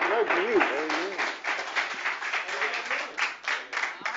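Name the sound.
audience applause welcoming guests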